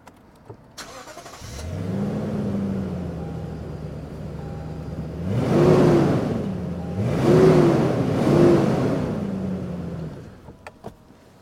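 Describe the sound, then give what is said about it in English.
A Lexus GX460 V8 engine starts up and settles into a steady idle, then is revved three times in quick succession, each rise swelling loudly before dropping back to idle, with no talking. “Now we're moving over to the GX460, and we're going to let you listen to the engine note because obviously a V8 is much more interesting.”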